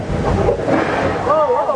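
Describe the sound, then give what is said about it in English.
Rushing, splashing water on an amusement ride fills the scene with a steady wash of noise, like a spray or wave hitting riders, and a voice rises briefly over it near the end. “What was that? That was water.”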